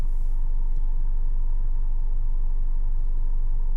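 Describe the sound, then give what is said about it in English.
A steady low rumble fills a car's interior, heard from the front seat in the middle of the afternoon, a constant deep hum with faint road noise and no voices, loud and unchanging throughout. “I'm sitting in the front seat of my car right now, in the middle of the afternoon.”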